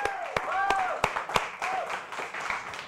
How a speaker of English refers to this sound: And you recognize him, I'm sure. …, all the way out from Florida. A round of applause.